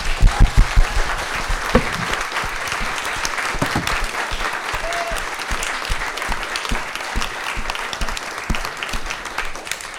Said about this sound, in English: So can I have the most enormous round of applause